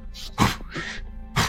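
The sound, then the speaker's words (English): A voice imitates a dog's short half growl-bark, a couple of gruff, breathy bursts with a rough rumble in between, fairly quiet overall. “It's like a little half, like, growl bark.”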